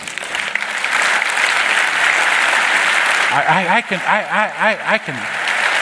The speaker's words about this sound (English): To God, you need to clap for those kids.